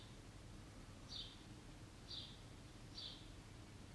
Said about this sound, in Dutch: The calling of this bird is reminding you of your calling.